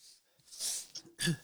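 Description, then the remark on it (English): A man coughs twice as he crosses a room, short rough bursts with a brief breathy pause between them and no talking. “And he's coughing as he crosses the room.”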